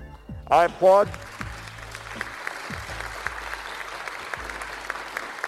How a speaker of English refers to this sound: Let's see where he's going. He's applauding, though.